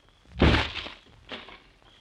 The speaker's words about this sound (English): Step back, will you? I'm going to kick open the door and be ready to duck a few bullets.